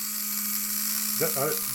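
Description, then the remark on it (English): A Dremel rotary tool, lunged at a person, whirs steadily throughout, a constant high hiss over a low, even hum, with a short burst of voice near the end. “He actually did lunge at me with a Dremel.”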